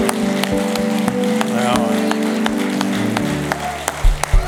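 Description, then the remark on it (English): An audience gives one more round of applause to thank a group of children, a steady, dense round with sharper individual claps standing out, while a low sustained tone hums underneath throughout. “So let's give them one more round of applause.”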